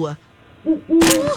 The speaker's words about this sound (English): There was a baby owl there. Probably so scared, right?